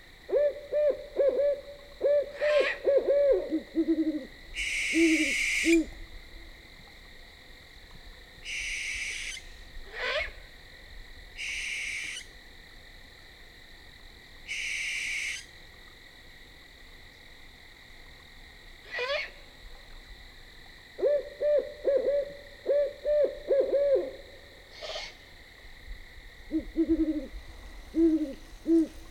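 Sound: owls hooting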